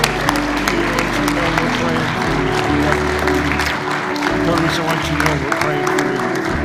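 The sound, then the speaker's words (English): A church audience claps hands together in sustained, dense applause for God at the end of a Sunday prayer, many overlapping claps at a steady loud level with a low murmur of voices beneath. “let's give a hand clap to God.”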